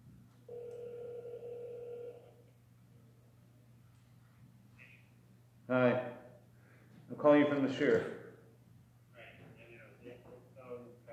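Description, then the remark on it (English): A single ringback tone purrs on a phone line for about a second and a half over a low steady hum, then voices speak in short bursts afterward. “He didn't pick up. He's about learning the shir, except he's got cut off. Try it again.”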